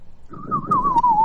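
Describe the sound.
A person whistles a bird call, one sustained, gently wavering tone lasting about a second, clear over a low, rumbling background hum.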